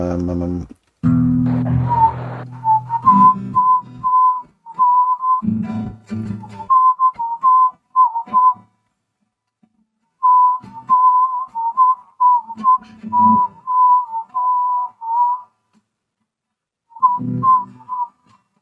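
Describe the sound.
Someone whistles a song's melody in a steady mid-high pitch, phrase after phrase with short pauses between, while bits of voice and low murmuring break in now and then.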